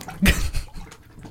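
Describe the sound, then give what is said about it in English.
A short splash of water in a bathtub as a person reaches for a thermometer dropped out of arm's reach, one quick sloshing burst followed by softer lapping and movement, with no voices. “Shit, I dropped it out of arm's reach.”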